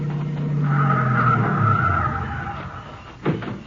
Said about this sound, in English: Here comes a couple of cars.